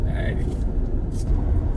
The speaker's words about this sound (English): Okay, so we're in the car. How long have we been driving? Half an hour? Ish, maybe a little more. A little more than half an hour.